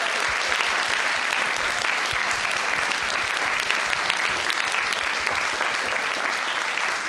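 A crowd applauds a storyteller steadily for several seconds, a dense, even wash of many hands clapping at a constant loud level with no voices standing out.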